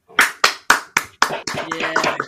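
Five loud, evenly spaced hand claps ring out up close, then give way to a denser burst of clapping mixed with cheering voices.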